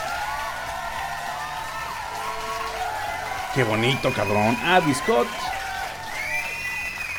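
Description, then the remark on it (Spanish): An applause and cheering sound effect: crowd cheering with whoops and whistles rises over steady clapping throughout, while a man talks loudly and excitedly in the middle of the noise. “Un aplauso.”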